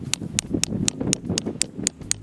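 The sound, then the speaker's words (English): A small tap hammer lightly taps a metal tree saver sap tap into a tree, set slightly upward an inch and a half in, so as not to split the wood, about nine crisp, even strikes in a steady quick rhythm, each a sharp clicky knock with no voices. “Tree saver tap and a little tap hammer. The whole idea here is you don't wanna split the wood. So we're just gonna lightly tap this.”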